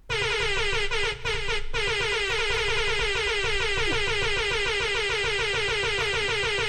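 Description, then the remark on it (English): A loud, buzzing vuvuzela-like horn blares in one long steady blast for almost seven seconds, its raspy tone unwavering except for two quick breaks early on, made as the beep of a Star Wars droid. “The Vuvuzela of Star Wars is exactly what that is.”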